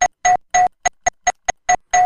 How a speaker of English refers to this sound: Oh, I like that. The doorbell. It's either the doorbell or the duck. Or maybe both. Let's go with the doorbell. Okay, the doorbell is if you get it right.